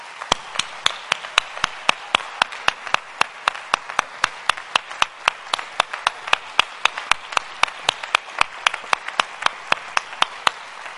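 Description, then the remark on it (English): An audience applauds a group of men in a steady, even rhythm, roughly three sharp claps per second, carrying on without pause and with no one talking over it. “I want you to give these men a great big hand of applause.”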